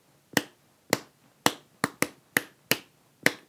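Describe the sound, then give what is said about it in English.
Eight crisp hand claps in a loose rhythmic pattern, a couple landing in quick succession, each sharp and dry with a short tail, and no voices; a clap rhythm for a Sodak.tv title sequence. “So I want to have just like a rhythm, like clap.”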